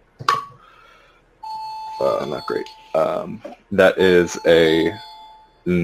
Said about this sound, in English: Yeah, that's the doorbell. it echoes throughout the entire room. It's hilarious.